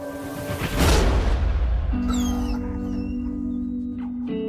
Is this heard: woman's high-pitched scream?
no